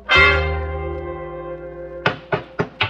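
A sustained, ringing tone slowly fades for about two seconds, then four sharp, evenly spaced hammer blows strike in quick succession, each loud and resonant. No one speaks.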